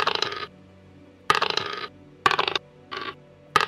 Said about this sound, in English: But let me roll the dice because I'm having trouble.